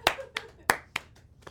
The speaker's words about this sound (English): Can we clap?